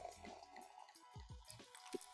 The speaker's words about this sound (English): So we're going to pour the wine, other than the champagne.